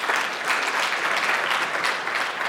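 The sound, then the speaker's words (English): An audience breaks into steady applause at the preacher's invitation during a sermon, a dense, even wash of many hands clapping at a consistent loudness throughout, with no voices standing out above it. “Amen, you can clap to that.”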